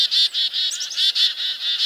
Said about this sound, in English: A frantic cacophony of loud, rapid bird calls tells other birds nearby there's a predator on the prowl. Mobbing, it's called, as birds clamor and dart back and forth at the threat.